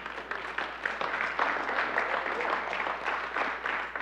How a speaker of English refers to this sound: Yeah, you ought to clap.